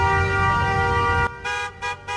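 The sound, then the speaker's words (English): Loud car horns blare in a long sustained blast over low engine rumble at a protest in America, then continue as a few shorter, choppy honks. “Honk if you want to die of the coronavirus.”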